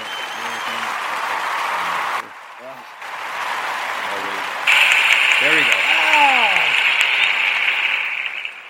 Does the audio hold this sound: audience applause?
yes